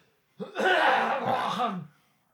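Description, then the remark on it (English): A harsh, rasping cough bursts out and carries on for over a second in one rough, hacking fit before stopping abruptly, with no talking around it. “Hold on. I got a cough.”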